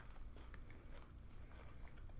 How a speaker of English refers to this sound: But the coating on it makes it very crunchy. You can tell you're biting through sugar.